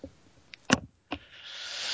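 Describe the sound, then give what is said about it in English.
A head knocks against a microphone, giving one loud, dull thump followed shortly by a softer second bump, then a rising hiss of handling noise; no one speaks. “That was my skull on the microphone there at the end, instead of an ellipsis.”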